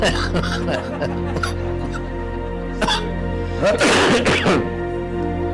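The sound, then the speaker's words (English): A loud cough bursts right into a microphone, harsh and breathy, after a few softer throat sounds, over a steady low electrical hum, as a prayer begins at a church service. “I got on just in time to cough into it.”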